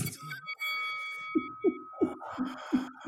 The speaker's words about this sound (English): Well, it is, I'm ringing this bell.